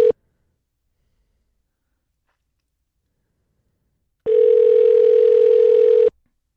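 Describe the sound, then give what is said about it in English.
A payphone dial tone from the last phone left in a bank of phones in the Memorial Student Center at Marshall University blips briefly, then after a pause hums steadily for about two seconds under a layer of crackling static, fairly loud, before cutting off abruptly. “The last one left in a bank of phones.”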